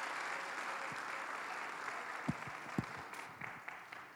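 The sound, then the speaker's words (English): An audience applauds in a steady, dense wash of overlapping claps, with a few sharper individual claps standing out before the applause thins slightly toward the end. No one speaks. “Let's go ahead and give them another round of applause.”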